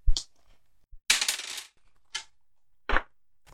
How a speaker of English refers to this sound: And now roll D6. Which is... like a regular dice.